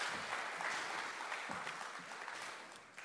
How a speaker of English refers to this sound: Thanks, guys. Can you give these guys a round of applause? Thank you.